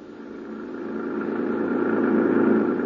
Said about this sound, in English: An hour later, Gino Romero and I were heading back toward the city in the government jeep, leaving behind us the wrecked plane, the crushed trees, and the lonely slope on the mountain.